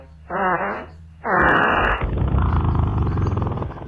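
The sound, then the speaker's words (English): Two loud, buzzy farting blasts in quick succession, the second longer and raspier, followed by a continuous rough rumbling noise. No one speaks. “Somebody's farting.”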